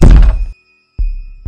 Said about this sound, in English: As she's processing this, the attendant begins to bang on her window.